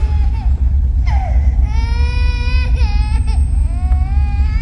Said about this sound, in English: And you made a baby cry.